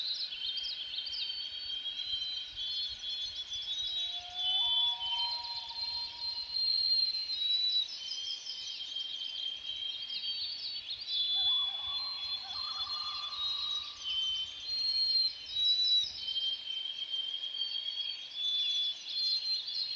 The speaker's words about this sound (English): Now there is my favorite sound in the world. It's a common loon. There's a breeding pair out on the lake. You see them? Let's hear what they have to say.